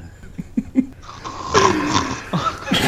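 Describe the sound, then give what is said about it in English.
Loud, rasping snoring with a harsh, throaty rattle, rising into a long noisy inhale after a few short quieter snorts, close up and forceful like a heavy male snore. “I'm sorry, I still snore like a man.”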